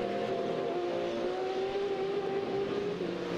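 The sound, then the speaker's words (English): Race car engines, a BMW among them, roar steadily as they accelerate on a race track heading towards turn 10 and across the rise, the pitch climbing gradually over a few seconds. The sound is loud and continuous, with no voices. “Tandy coming off a win at VLN3 is right underneath the rear wing of the BMW”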